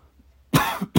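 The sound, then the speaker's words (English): A loud cough bursts out, followed by a short second cough a moment later, dry and harsh, with no talking around it. “And I'm coughing.”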